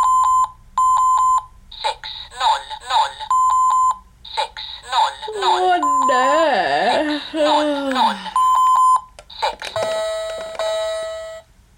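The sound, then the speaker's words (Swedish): A talking electronic alarm clock rings with repeated high beeping tones, then its synthetic voice briefly announces the time over and between the beeps before a final tone ends it, loud. “Talande väckarklocka.”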